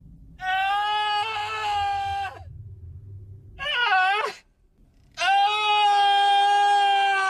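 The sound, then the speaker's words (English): In a film scene, a man screams in anguish three times: a long, loud, sustained cry, a shorter wavering wail, then another long, strained scream, raw with no other talking. “starts screaming. And then we hear this.”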